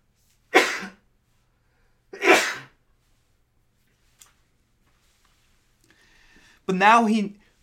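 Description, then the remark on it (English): Two sharp sneezes about a second and a half apart, each a loud burst, followed after a pause by a faint click and a brief voiced sound near the end. “Oh, I'm going to sneeze.”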